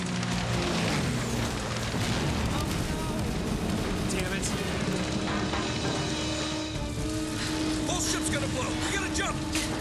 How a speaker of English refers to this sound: Control until they blew up the boat.